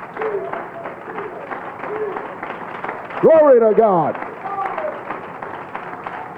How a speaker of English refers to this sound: And the church shouted, amen. Give the Lord a real good hand clap.